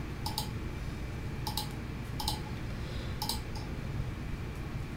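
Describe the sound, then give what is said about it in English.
A small ten-sided die is rolled and clatters across a hard surface in a few quick, light clicks spread over several seconds, fairly quiet against a steady background hum, with no one talking. “Need you to roll a 10-sided dice.”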